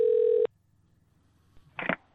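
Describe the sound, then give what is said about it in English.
A loud, steady electronic ring tone on a phone line sounds once, then cuts off into near silence before a short crackly burst, like the call being picked up. “One of you unmute and respond that you can hear the ringing at least.”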